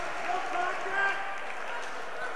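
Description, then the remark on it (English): Dense gym crowd noise with scattered raised voices shouting over a steady roar: Jamestown basketball fans yelling at once for a foul call after a blocked shot, sustained. “Jamestown crowd asking for contact.”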